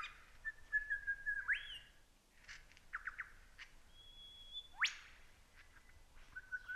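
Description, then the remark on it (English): A lyrebird imitates a wattlebird's squawk call: harsh, rasping squawk bursts mixed with thin sustained whistles and a couple of sharp rising whip notes, fairly clear, with no voices. “And that sort of squawk sound, that's a wattle bird's call. Big bird, size of a jay. Imitated again perfectly by this lyrebird.”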